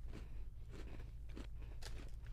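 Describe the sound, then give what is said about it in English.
Someone bites into a crunchy ginger vanilla cookie broken in half, a few sharp crunches and crackles followed by chewing over a low steady hum, with no talking. “Oh, this one's like extra crunchy.”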